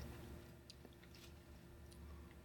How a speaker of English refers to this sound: It's crunchy. I hear you crunching. It's crunchy, it's chocolatey, it's sweet, it's caramelly.